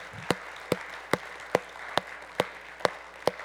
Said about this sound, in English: Could we honor him by clapping this morning and thanking him? All authority. All authority.